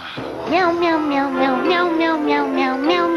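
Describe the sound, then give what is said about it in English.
A loud cat-like voice meows over and over in a quick, steady rhythm in a Meow Mix cat food commercial. The calls are strung together almost like a sung tune on a held pitch. “In fact, it's the only cat food that tastes so good, cats ask for it by name.”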